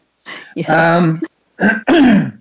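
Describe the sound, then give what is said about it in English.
Two people each clear their throat: two rough, voiced throat clearings, each a short catch followed by a longer gravelly rasp, loud and with no speech over them. “Excuse me, it sounds like we both got a little bit of a frog in our throats.”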